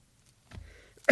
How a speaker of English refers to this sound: And you won't have to listen to me coughing anymore.